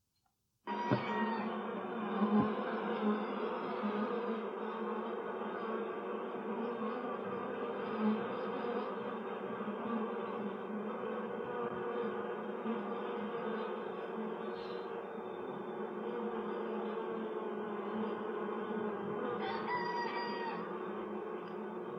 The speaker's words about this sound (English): I'm joined today by just straight up a bunch of bees.